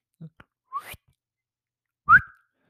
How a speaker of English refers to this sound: that was a bad whistle.